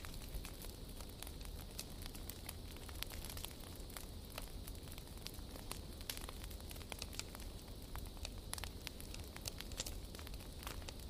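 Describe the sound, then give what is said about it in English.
A wood fire crackles steadily, with frequent sharp pops and snaps scattered over a soft, continuous hiss of burning, fairly quiet, with no voices. “The warmth, the light, and the rhythmic sound of the crackling wood combine to create a cocoon of tranquility.”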